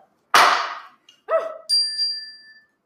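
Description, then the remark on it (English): A sharp metallic clang followed by two ringing dings of a telephone bell, each tone decaying with a bright, sustained shimmer. Fairly loud, with no voices. “Oh, who's trying to call me?”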